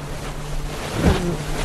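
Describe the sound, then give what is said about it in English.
A short boating sound effect: a steady low engine hum beneath a wash of waves and wind, with a brief louder splash near the middle. No one speaks. “Wait, do I need to prepare the boating soundtrack?”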